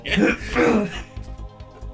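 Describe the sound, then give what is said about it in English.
A single loud, breathy sneeze bursts out over the first second, then fades into a quieter stretch with a low steady hum and light background murmuring. “You sneeze and change your mind.”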